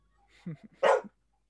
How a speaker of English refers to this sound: Oh my God, was that a dog?